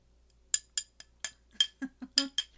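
Cutlery repeatedly scraping and clinking against bowls as two people eat, about nine sharp metallic clanks in an uneven rhythm, fairly loud, with a few duller knocks mixed in. No talking.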